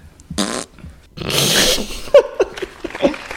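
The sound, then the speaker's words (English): Two loud, sputtering raspberry noises made with the mouth by Mike Gundy while saying he doesn't care about Twitter, the first short and buzzy, the second longer and broader, followed by a few faint clicks and murmurs. “Obviously, that would be Mike Gundy talking about how he doesn't care about Twitter with two fart noises with his mouth.”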